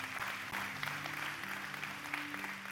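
A church audience claps their hands together to thank the Lord, a dense, steady patter of many hands at moderate volume, with a faint sustained tone humming underneath.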